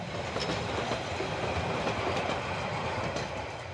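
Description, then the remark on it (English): A train carrying the Barcelona football team at night with its lights out rolls steadily along the rails with a continuous loud rumble, broken by faint rhythmic clicks from the wheels. No voices are heard. “When O'Connell and the team travelled to play regional matches, they went by train at night with the lights out to avoid bombardment by Franco's warships stationed at sea.”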